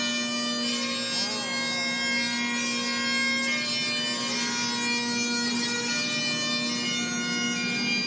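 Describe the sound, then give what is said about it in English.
Bagpipes play a slow tune over an unbroken, buzzing drone, the reedy melody rising and falling while the steady bass note holds loud and constant throughout, with no talking. “So there's a powerful emotional especially with the bagpipes, right?”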